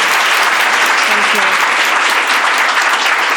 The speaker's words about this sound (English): Can we please give her a round of applause? Thank you.